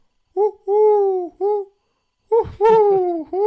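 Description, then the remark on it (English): A person's voice imitates an owl, hooting in two close, clear runs of three calls each: a short hoot, a long drawn-out one, then another short one, the second run a little rougher. “Yep, it's me who's been doing that. That's funny. I like that. It's me, but not a bird.”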